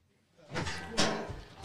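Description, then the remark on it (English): A door is opened as a guest enters, with a short run of bumps, rattles and a scraping swing, ending in a sharp clunk as it moves against its frame. “Doors unlocked. Go away. Come on in.”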